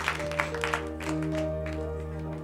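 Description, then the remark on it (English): An audience at a church service breaks into applause for Jesus, a few sharp claps at first swelling into a steady wash of clapping, over sustained low organ-like chords that hold throughout. “Clap for Jesus.”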